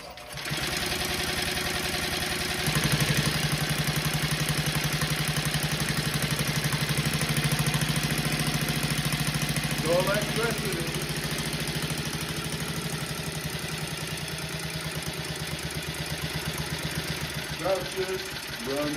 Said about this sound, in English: So I'm going to turn it back on, get it motoring, and then when I start opening the valve, see if you can hear the difference as we start getting pops or explosions of hydrogen inside the cylinder.